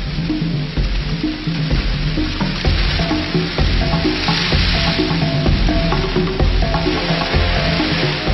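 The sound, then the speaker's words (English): A swarm of locust hoppers, emerging after rains, makes a dense, continuous crackling rustle, steady and loud throughout, like sizzling, with faint tonal notes running underneath. “Triggered by the rains, an all-devouring army. Locusts.”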